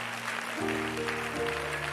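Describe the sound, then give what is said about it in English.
An audience claps their hands to the Lord steadily in a dense, continuous wash of hand claps, with sustained keyboard chords underneath that shift partway through. No one speaks. “Come on, can you clap those hands a little bit louder?”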